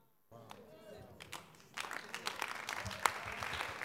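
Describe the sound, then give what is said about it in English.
An audience breaks into applause for the Lord, starting with scattered claps and swelling into steady, dense clapping, with a voice faintly audible underneath at the start. “Oh, somebody is giving the Lord a clap of you.”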